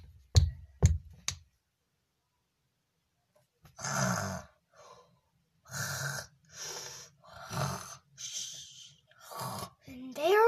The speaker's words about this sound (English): Snoring again.